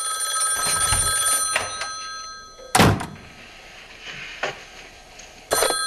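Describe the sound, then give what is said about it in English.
An old-fashioned telephone bell in a scene from a slasher film rings on and on with a bright metallic jangle, broken by a few sharp thuds and knocks. No one speaks. “just Billy and the sister on the phone and all that kind of stuff is chilling”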